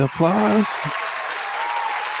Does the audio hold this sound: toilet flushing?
no